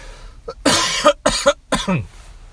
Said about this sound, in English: All right, excuse me one second. I'm still getting over this cold, so I'm going to start coughing up a storm like crazy. Just hold on 1 second.